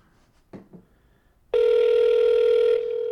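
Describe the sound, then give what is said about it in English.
A phone line rings on a call placed to the radio station K-Rock: after a quiet start with a couple of faint soft sounds, a loud, steady, buzzy electronic ring tone starts abruptly and holds unbroken to the end. “Hello, still ringing.”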